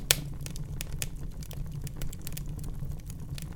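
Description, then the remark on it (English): Fireplace embers crackle in a cabin with wooden walls, with irregular sharp snaps and pops, some louder than others, over a steady low rumble. No one speaks. “You can feel the heat from the flickering flames, and you can hear the embers crackling.”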